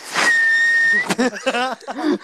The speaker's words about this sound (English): How do you whistle? Just like this. Just like this.